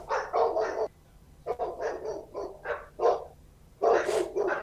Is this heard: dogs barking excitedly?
yes